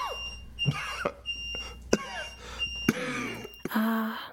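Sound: smoke alarm beeping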